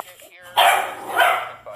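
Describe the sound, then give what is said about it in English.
A 15-pound purebred dog barks twice in sharp, loud bursts after a brief stretch of quieter whining or murmuring. “I grabbed the spray bottle, a humane disciplinary tool recommended from our virtual dog trainer, and spritz the 15-pound dog five times with water.”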